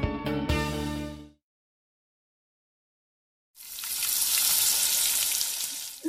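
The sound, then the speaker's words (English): After a short burst of tonal music and a couple of seconds of silence, fried chicken sizzles loudly in a pan, a steady crackling hiss that continues to the end with no talking. “I hear something sizzling, right? It's my cocaine fried chicken.”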